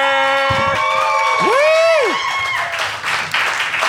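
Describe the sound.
A burst of crowd applause with loud whoops and sustained cheering voices, including a rising-and-falling shout in the middle, then clapping continuing as the cheers fade.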